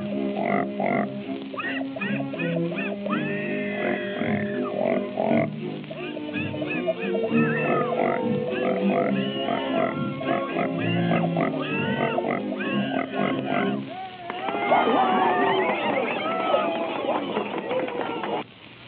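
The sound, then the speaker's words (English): Two singing pigs squeal and grunt in rapid, pitched bursts that rise and fall like a tune, loud, with a busier, wavering stretch of squeals near the end. “First, I gotta get them in pitch. Well, that's good enough. We ain't so particular as Minnie. Presenting Mr. and Mrs. Patty Pig.”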